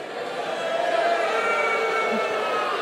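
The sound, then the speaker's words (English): A crowd of men booing Nashville being called the Bachelorette Party Capital, a dense, steady wash of low drawn-out jeering voices that holds at an even loudness for about three seconds without letting up. “A lot of guys booing.”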